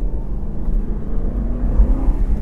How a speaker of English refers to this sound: it's not a tiring car to drive, because of all of that torque from the increased capacity of the V8 engine